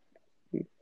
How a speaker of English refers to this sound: Sorry, I was just taking a sip of my amazing bourbon. Oh, so good. This might be the best bourbon I've had on this TikTok on my TikTok.